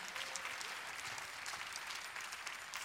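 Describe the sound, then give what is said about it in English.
A crowd claps steadily for about three seconds to praise God during worship, a dense, even wash of many hands with no voices standing out above it. “If you know I'm telling the truth, clap your hands and praise God.”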